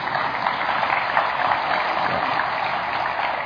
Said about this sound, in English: Is that right? Okay. I need more applause for that one.